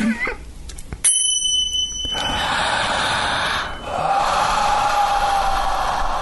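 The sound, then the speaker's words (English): Small chimes are struck once, giving a bright, high ringing tone that shimmers and fades over about a second, followed by a long, steady, airy hiss like slow breathing, as people do a breathing exercise together. “And now that we got the little chimes, we can really do it right.”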